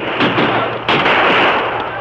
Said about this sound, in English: So we'll just keep pouring lead into them from up here until we're sure they're dead. Then we won't be taking any chances. Now open fire!